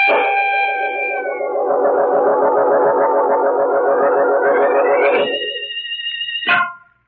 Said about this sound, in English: Wait a minute, Mary. I hear sirens. It's the police.